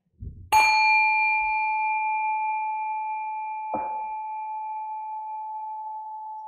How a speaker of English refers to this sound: We'll give a sound of a bell to begin.